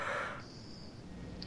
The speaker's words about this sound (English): What are you yawning for in the middle of the sentence?